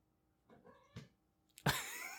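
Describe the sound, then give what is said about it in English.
A fat female cat named Nefi, under a chair by the microphone and sniffing it, makes a few soft chirping sounds, then lets out a louder, drawn-out meow that rises and falls in pitch. No one is talking. “It's my cat right here. It's just chilling under my chair.”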